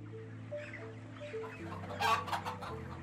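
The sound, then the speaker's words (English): Many chickens clucking and chattering together in a chicken shed at Lower Farm in Derbyshire, England, a busy continuous flock murmur with a few louder squawks near the middle, over a steady low mechanical hum like ventilation fans. “It's run by David Speller, who's pioneered the use of CCTV and CO2 monitors in chicken sheds.”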